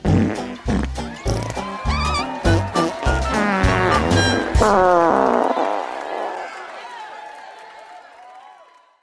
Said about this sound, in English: But farting is my favorite noise. There's nothing like a toot.